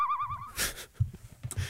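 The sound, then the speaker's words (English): A pet bird gives a single wavering, warbling whistle for about half a second, followed by a brief noisy burst and some soft low thumps and rustling. “You're a bird. You're a shitty bird.”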